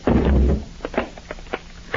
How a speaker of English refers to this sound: Mr. Peters, the door is cracking. I'm afraid it won't be long now.